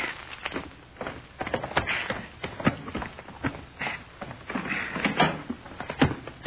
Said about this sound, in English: All right, go ahead and open the door, sort of. Here's the keys.